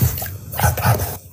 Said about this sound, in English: A dog who has learned how to whisper. You have to kind of listen close. I cranked it up so you can hear it really good, but all right. This dog is whispering.